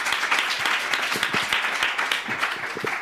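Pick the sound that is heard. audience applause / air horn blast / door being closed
audience applause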